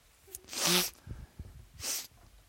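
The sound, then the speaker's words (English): A loud sneeze with a voiced burst, followed about a second later by a shorter, breathy hiss like a sniff or second small sneeze. “I'm going to have to sneeze.”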